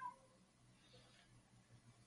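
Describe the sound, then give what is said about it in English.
A faint, short meow from Poppy, a cat, with no one talking over it. “Is that your cat or mine?”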